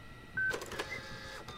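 A printer whirs into action with a short burst of mechanical feed noise and faint electronic beeps, a brief sound of an ultrasound image being printed, with no talking.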